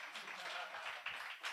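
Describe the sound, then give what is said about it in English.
A small audience claps steadily, a dense, continuous patter of many hands with no voices over it, fairly soft and even throughout the brief burst. “Thank you for clapping.”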